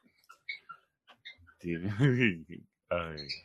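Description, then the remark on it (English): A bird sings in a rhythmic pattern, starting with short clicks and chirps, then breaking into longer, warbling, voice-like notes that rise and fall, moderately loud. “I love the bird tonight. It's actually got rhythm. I don't know what it's singing, but it's singing.”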